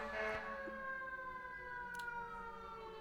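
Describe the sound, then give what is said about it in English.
A steady wailing ambulance siren sounds outside, its tones holding and slowly shifting, fairly faint, with no talking over it. “I'm guessing there's an ambulance outside.”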